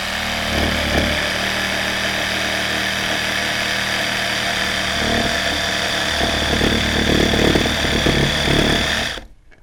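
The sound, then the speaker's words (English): A power saw cuts through a gourd along a pencil line with a steady, loud mechanical buzz and rasping grind that holds for about nine seconds, then cuts off abruptly. No one speaks. “Now you don't want to be pushing your saw when you're cutting.”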